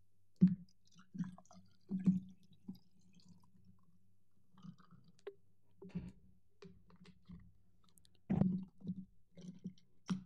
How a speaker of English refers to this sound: So we are just drinking water because I just need some water for my throat. And let me get that opened.